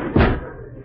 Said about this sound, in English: Wait, I'll close this door.